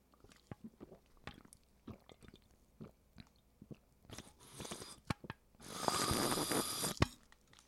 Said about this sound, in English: Nothing like, it's the first time I've ever slurped the end of a can of Bang.